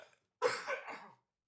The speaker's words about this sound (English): Excuse my coughing.